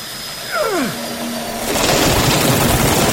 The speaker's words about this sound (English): Pick up the drill, Alan.